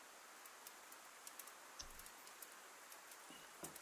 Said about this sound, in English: Really need some more sound effects, I'm afraid, guys, but never mind. We've just got the rain.